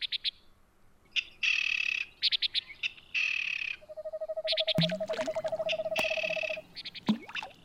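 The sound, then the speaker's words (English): Forest ambience with layered wildlife calls: repeated bright chirping bursts, a steady rapid pulsing trill mid-clip, and a few sharp swooping cries over a faint low background, no voices. “If you're running short on nature time, take the next few moments to have a mock forest bath.”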